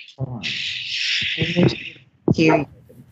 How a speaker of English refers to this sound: We're hearing somebody barking. Yeah, he's actually under the covers barking. Because he hears us? Yeah, he's a tiny little thing. He's a dachshund.